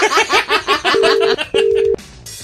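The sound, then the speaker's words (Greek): A brief burst of voice or laughter gives way to a phone ringing on the line for a radio wake-up call: two steady, evenly spaced ring tones, clear, with a short pause between them. “Έλα, μπρε, Ελευθερία. Σήκωσέ το.”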